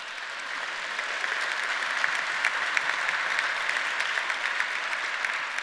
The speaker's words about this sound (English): If you're clapping, you need to be here next week. That's all I'm saying.